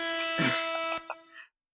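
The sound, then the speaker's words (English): A loud, blaring air horn blast sounds for about a second and a half, a brash sustained tone that cuts off abruptly with a short fading tail. “So I think we found our first plot hole. Get some air horns in here.”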